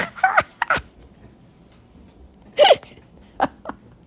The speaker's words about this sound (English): My dog is like spazzing out and going after her tail right now.